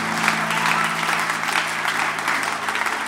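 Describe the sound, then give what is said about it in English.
An audience claps hands in praise of Jesus, a dense, steady wash of applause that stays loud and even for the full few seconds, with a faint low hum beneath. “Come on, if you love Jesus, let's give him a hand clap of praise tonight.”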